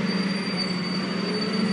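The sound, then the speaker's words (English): A heavy green composting collection lorry rumbles past across the road on Upper Street, N1, a steady, loud low roar with a thin high-pitched whine running over it, no voices. “That rumble is composting.”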